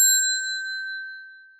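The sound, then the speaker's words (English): A single clear bell ding rings out with a bright metallic onset, then its pure tone lingers and slowly fades over a second and a half, with no voices. “And before you start crying, let's get the bell.”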